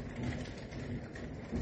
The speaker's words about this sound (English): I don't know if you guys can, it's thundering, it's storming outside